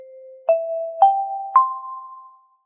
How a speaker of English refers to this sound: I've got a new chime this week